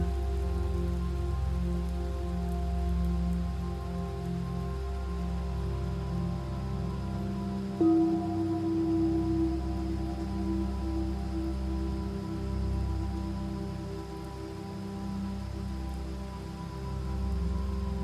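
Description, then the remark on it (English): A river flows steadily, its broad, continuous rush of water holding an even, full sound throughout with no voices, and a faint tonal hum running underneath. “Hear the river.”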